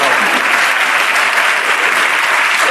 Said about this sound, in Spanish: ¡Bravo! Es un aplauso a la buena memoria. Y aplaude.